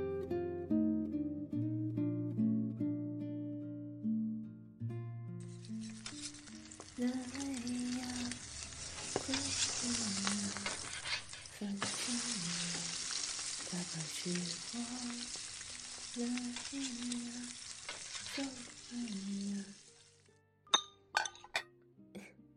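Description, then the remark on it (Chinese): A steak being pan-fried for breakfast sizzles loudly in a frying pan, a steady crackling hiss lasting about fifteen seconds, with occasional utensil clinks over soft background music, then a few sharp clicks as it stops. “OK， 搞定，终于把牛排煎好了。”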